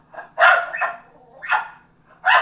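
A dog, Abby, barks in a short, uneven series of about four sharp, loud barks, two coming in quick succession and then spaced out, with no one talking.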